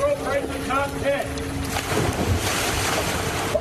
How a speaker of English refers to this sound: Here, we have the great moments in tourists driving their car in the ocean history. This happened last month. Pretty sure that wasn't supposed to happen.